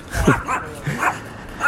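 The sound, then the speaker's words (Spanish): A dog gives three short, high barks with a slightly whiny, yipping edge, spaced irregularly over a second or so, moderately loud against a quiet background. “Bueno, este perro sí que sabe.”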